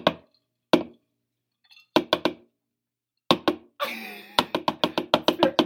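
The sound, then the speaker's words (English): Sharp wooden knocks imitating a bed banging: a few single knocks, then quick pairs and triplets, and finally a rapid steady run of knocking after a brief noisy burst. “but the funny thing is you can tell that they're banging because of the rhythm.”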